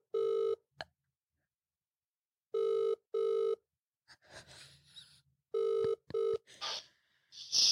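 A telephone ringback tone on an outgoing phone-a-friend lifeline call during a spelling game: short paired electronic rings repeating at steady intervals, clear, with brief rustling and faint background noise between them.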